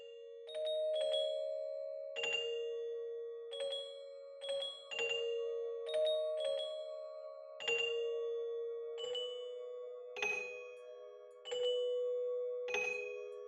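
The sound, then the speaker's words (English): An hour bell tolls alone, about a dozen clear, deep strikes at a steady, unhurried pace, each ringing out and overlapping the next in a sustained, resonant hum. “The hour bell sounded with a deep, dull, hollow melancholy.”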